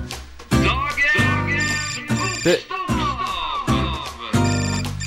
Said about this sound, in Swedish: Det ringer, vänta, jag måste bara ta det.